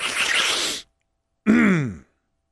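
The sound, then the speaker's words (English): A forceful sneeze bursts out as a harsh breathy blast during a live radio broadcast in a studio, then after a brief pause a short voiced groan with a wavering pitch follows. “I don't think I've ever had a sneeze.”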